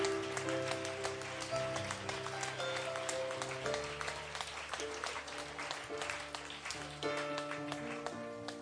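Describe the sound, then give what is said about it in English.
An audience claps steadily to the Lord for several seconds, a dense wash of many hands, while sustained organ or keyboard chords play underneath. “Would you clap your hands to the Lord one more time?”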